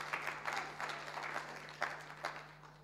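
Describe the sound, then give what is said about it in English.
An audience claps together for a few seconds to give God a clap, a dense, steady patter of many hands at moderate volume, with a low constant hum underneath and no voices over it. “Yes, give God a clap.”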